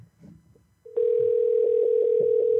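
A steady, loud telephone dial tone hums at a single mid-low pitch, starting abruptly after a brief stretch of faint low murmuring and holding unbroken to the end.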